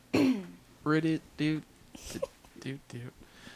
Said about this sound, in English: coughs off mic, so I'll make fun of her every time she does it. Okay, never coughing again.